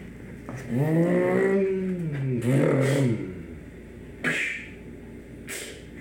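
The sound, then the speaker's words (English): A voice imitates a car engine revving, a rising and falling vroom in two swells lasting about two seconds, loud, followed by a couple of short sharp clicks. “Well, I can't hear you over the sound of my engine.”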